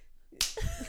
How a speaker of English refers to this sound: Clap.